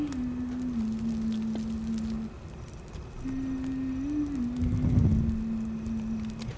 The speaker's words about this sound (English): Oops. Sorry, guys. Hope that didn't come in loud. Little campfire going.